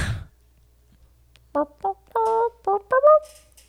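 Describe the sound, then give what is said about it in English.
A person imitates a crow, voicing about five quick, harsh caws in an uneven rhythm, fairly loud, after a brief opening thump and a moment of quiet. “They're so annoying, too. When you hear that noise, too, you're just like, ugh.”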